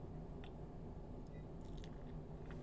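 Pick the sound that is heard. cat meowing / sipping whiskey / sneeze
sipping whiskey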